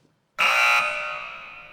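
A single bright quiz buzzer bell rings out abruptly, holding a loud metallic tone for a moment before slowly fading away, with no voices over it.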